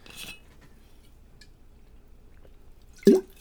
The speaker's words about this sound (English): Or as I spilled my water as I just did. God damn it.